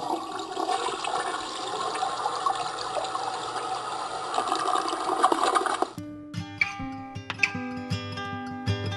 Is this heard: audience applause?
no